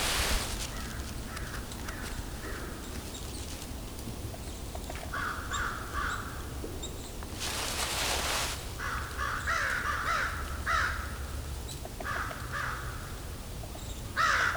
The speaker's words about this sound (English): There goes the crows. These are American crows.